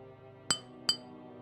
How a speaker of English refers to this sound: As you continue your exploration of this city, you hear a clippity-clop on the cobblestones and like a dinging of a bell.